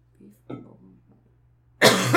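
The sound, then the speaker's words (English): A few short, muffled throat-clearing sounds lead into a loud, harsh cough burst near the end, with no other sounds around it. “It's also one of those things where once I feel like I'm going to cough and I focus on it, then.”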